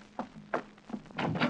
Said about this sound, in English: Do I look all right? Do my nails look terrible with this chartreuse? Well, guess I'll open the door.